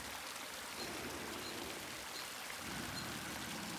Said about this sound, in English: It's surrounded by a rocky overhang where a small waterfall streams down onto slabs of limestone. The rush of the water is just forceful enough to produce a cloud of mist where it meets the surface of the rocks below.